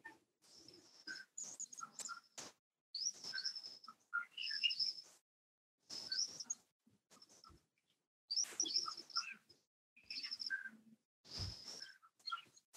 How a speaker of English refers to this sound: Enjoy the twittering of the birds. Sunrise in India.